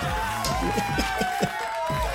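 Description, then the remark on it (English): A large crowd chants in a steady, rhythmic pulse, many voices blending into a loud, continuous roar with a sustained pitched tone running through it. “I can hear the crowd chanting.”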